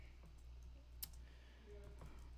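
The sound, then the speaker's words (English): A few scattered computer keyboard clicks, like slow, intermittent typing, over a steady low electrical hum. The taps are soft, with one sharper keystroke standing out. No one speaks. “While I said, here, I'm typing it out on screen for y'all.”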